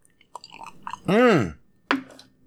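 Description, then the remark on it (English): Black Velvet Canadian blended whiskey gurgles out of a bottle: a few soft wet clicks, then one loud, tonal glug that swoops up and back down in pitch, followed by a sharp knock and a low lingering hum. “Just open a bottle, listen to a gurgle.”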